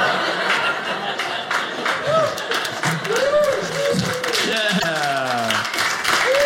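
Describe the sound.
An audience applauds with a steady patter of many hands clapping, mixed with laughter and excited voices, sustained at a fairly loud level throughout.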